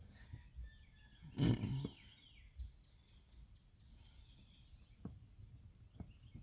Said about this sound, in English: Man, those birds just sound really good. It's very relaxing.